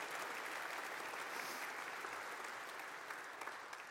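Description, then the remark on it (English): Steady, sustained applause from an audience honoring veterans and those who have served, a dense wash of many hands clapping at an even level for the whole stretch with no voices standing out. “And so let's give them one more round of applause, can we?”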